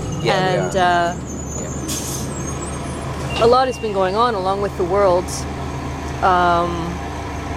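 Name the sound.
bus interior engine noise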